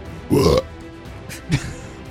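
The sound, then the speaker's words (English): A voice imitates a demon farting with a loud, buzzy, low raspberry lasting about a third of a second, then a shorter, quieter sputter a moment later. “That was the demon farting.”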